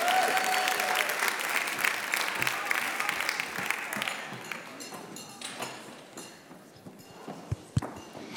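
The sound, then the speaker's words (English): A crowd applauds after a performance, with dense, crackling clapping that is loud at first and gradually thins and fades, with a few sharper individual claps standing out near the end. “Can we hear it one more time for Ms.”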